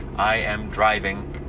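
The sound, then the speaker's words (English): A steady, low rumble of road noise inside a car driving to San Jose on a Friday morning hums continuously beneath a person speaking. “I'm driving on my way to San Jose for a noon low mass over there.”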